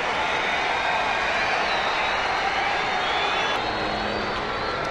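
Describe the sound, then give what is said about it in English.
A restless crowd waiting for an event to start fills the air with a steady, dense murmur of overlapping voices, a constant hum of chatter that stays at an even, fairly loud level throughout with no distinct words. “The crowd is getting restless. They want this thing to start.”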